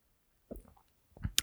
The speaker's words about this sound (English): So I'm going to take a sip. We'll see how this goes.